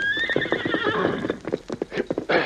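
A horse lets out a loud, wavering whinny that slides downward for over a second, followed by a run of sharp, rhythmic hoofbeats clopping along with no voices.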